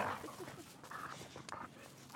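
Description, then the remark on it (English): Two cattle dogs, Roxy and Boof, whine and whimper in short, high, wavering bursts on a rural property, mixed with a few brief yips, over faint outdoor background noise. “These are a couple of cattle dogs.”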